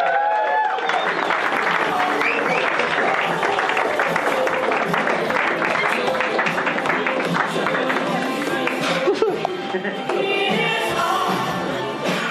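An audience applauds steadily for over ten seconds, a dense, loud wash of many hands clapping with a few voices mixed in, tapering slightly near the end.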